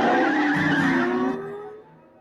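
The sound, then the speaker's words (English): Tires screech in a long skid as a car engine roars during a car chase, the squeal sliding downward in pitch before fading over about two seconds, with no voices. “Solid car chase there.”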